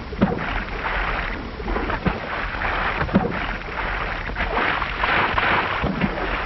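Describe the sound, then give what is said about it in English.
A boat towed by a giant ray rushes through water at about 40 miles an hour, a loud, steady hiss of spray and wash with hull slaps thumping against the waves about once a second, with no talking. “Now, what a ride they're getting. 40 miles an hour.”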